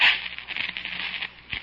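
Steady rain falls in a continuous soft hiss, moderately loud, with faint irregular patters and no voices.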